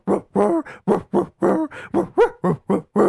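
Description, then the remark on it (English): A loud run of about eleven pitched dog barks, spaced in a steady rhythm that traces the Christmas melody Jingle Bells, with no talking. “We need the dogs with the dogs doing jingle bells.”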